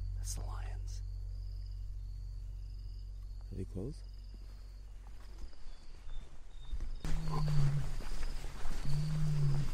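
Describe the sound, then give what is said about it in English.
Deep, resonant elephant rumbles sound close by at sunset, with a short rising call partway through and a couple of brief low bellows near the end, over steady insect chirring and some rustling. “We spent our last evening trying to track down some elephants.”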